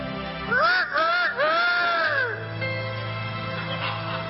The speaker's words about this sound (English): Hear the sound of the rooster roosting.